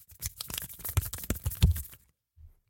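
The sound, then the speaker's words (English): A door that looks like it is made of hands opens with an odd, fleshy sound: about two seconds of dense crackling and tearing rustle with irregular louder bursts, then a brief silence and a soft low thud. “The door's open with a weird hand sound.”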